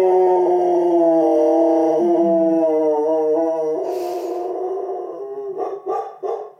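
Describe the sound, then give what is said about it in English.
A dog named Henry howls in a long, sustained, wavering tone, loud, then breaks into a few shorter yelping howls near the end. “Hey, doggy.”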